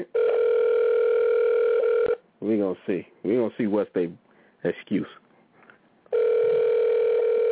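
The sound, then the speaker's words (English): A steady, buzzing phone ringback tone sounds loud for about two seconds as someone calls a person, gives way to a person talking, then starts ringing again on the line. “I'm about to call this person. I don't even know if y'all can hear it. I'm calling somebody.”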